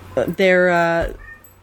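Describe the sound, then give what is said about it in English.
A cat, Figaro, lets out a short cry followed by a loud, drawn-out yowl with a steady, whiny pitch, lasting about half a second before fading. “We're both laughing because every time we try to start, or we're talking about getting started recording, your cats start singing in the background.”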